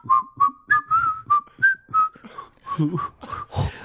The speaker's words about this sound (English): So it's comprised 100% of that, where it's just just like breathy whistles. Breathy whistling, like yeah, sort of wet, like where you go down, down, ding, doon, doon, doon, something like that, right?